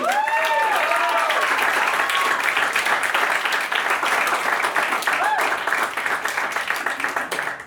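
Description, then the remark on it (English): Steady applause from an audience, dense clapping sustained throughout, with a few cheers and whoops rising above it early on and briefly again near the end. “So, with your applause, starting with Sean Jordan Zorro.”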